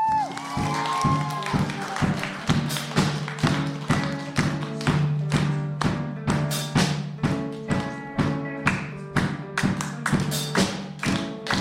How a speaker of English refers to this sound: Thank you for your time on stage. Please exit. Round of applause.